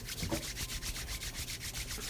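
Steady, soft rubbing of palms together, done to make a little rainstorm in a classroom, makes a continuous hissing swish with a gentle pulsing rhythm, imitating the patter of light rain. No one speaks.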